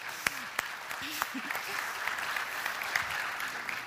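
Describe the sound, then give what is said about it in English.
An audience claps steadily for a few seconds, a dense patter of hand claps with a few sharper individual claps standing out, and faint voices murmuring underneath. “They did incredible, so we can give them a round of applause.”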